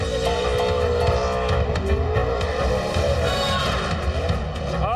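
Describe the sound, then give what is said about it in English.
A car engine roars and revs hard while tires squeal continuously, loud, with a shrill whine riding over the engine for the whole stretch. “Do not tear your car up. Whatever you do, go have fun, do a burnout, put on a show, but don't tear your car up.”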